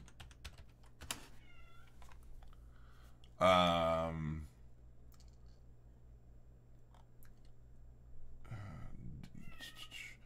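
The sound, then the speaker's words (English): A cat lets out one loud, drawn-out meow lasting about a second, with faint keyboard clicks and soft room noise around it. “Oh my gosh, this cat just drives me crazy.”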